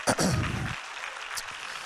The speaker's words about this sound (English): Are you proud of that? Give the Lord a hand clap if you are.